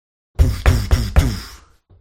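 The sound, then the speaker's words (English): Four heavy, booming knocks on a room door at an inn called the Fat Dog in the morning, in a steady, evenly spaced rhythm, each a deep thud with a short ringing tail, followed by a moment of quiet. “And you hear a heavy knock at your door.”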